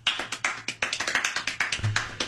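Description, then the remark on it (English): Rapid hand clapping in quick triplet bursts, a string of sharp, crisp slaps tumbling over each other at high speed with no voices. “And then he starts ripping some of these triplets.”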